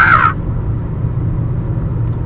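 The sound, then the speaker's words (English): A voice lets out one short, harsh caw in imitation of a crow, right at the start, then only a steady low rumble continues in the background. “My crow joke will be retiring to spend time with its family.”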